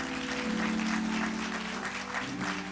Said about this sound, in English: you will get a big Cade Chapel welcome and hand clap. Come on, let's welcome them.